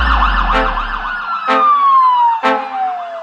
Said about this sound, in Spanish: Están cerrando la calle, la sirena explota.